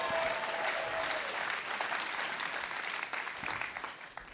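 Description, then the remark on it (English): An audience at LiveWire applauds the house band: a dense wash of clapping that stays loud and even throughout, thinning slightly toward the end with a few individual claps standing out. “Right, let's hear for the house band, ….”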